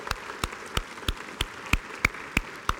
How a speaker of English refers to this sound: If you serve in any capacity at First Baptist Church, would you stand for me? Everybody, we got everybody standing? Can we give these folks a round of applause? Can we do that just for a second this morning?